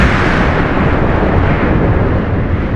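A loud, continuous volcanic eruption roar, a dense low rumble with crackling bursts that holds steady for about three seconds with no talking.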